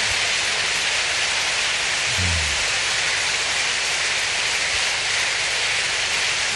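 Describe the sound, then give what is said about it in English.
An audience claps steadily together, many hands blending into a dense, continuous hiss-like roar that stays even and fairly loud throughout, with a brief low thump partway through. “Clap if your hands are still moving.”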